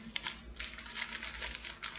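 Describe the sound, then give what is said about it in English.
Plastic wrapping crinkles and crackles as a large package from EJI is cut open. A steady run of irregular, bright rustling bursts plays with no one speaking. “Let me show you because I'm chopping it open so we can see what's inside.”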